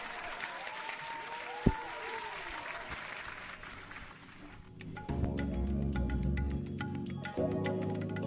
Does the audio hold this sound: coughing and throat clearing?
no